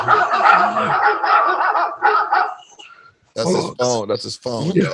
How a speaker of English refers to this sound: That's his phone. Yeah. Dog. Yeah. You got to have the dogs, man.